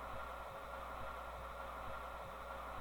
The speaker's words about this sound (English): It's just static, right? Yeah. It's just an annoying... big whoosh. Yeah. Actually, it kind of sounds like a white noise machine.